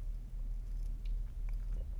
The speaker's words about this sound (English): That is disgusting. I don't know why my wife bought this stuff. That is really gross. Anyways, I'm sorry that you had to hear me gulp and wipe off my mustache real quick.